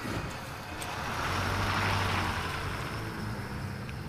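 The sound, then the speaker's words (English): A heavy bus engine rumbles steadily, swelling to a roaring peak midway and then easing slightly as it pulls away, with no voices present. “Run after the bus. Just run after the bus.”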